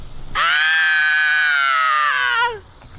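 A single sustained, harmonically rich scream in a man's voice, lasting about two seconds and loud, holding a steady pitch before trailing off, sounding like a voice artist performing a staged scream.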